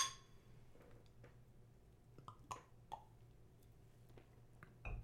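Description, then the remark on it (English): Glass beer bottles clink together in a toast: a few sharp, ringing taps spread over several seconds, fairly quiet, with no one talking. “Oh, wait, cheers. Cheers.”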